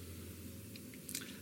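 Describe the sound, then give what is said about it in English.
Quiet chewing of chocolate with a few soft, moist crunches and a slightly louder bite near the end, over a low steady hum, with no talking. “It's really fun to crunch it, but you've got to stop yourself.”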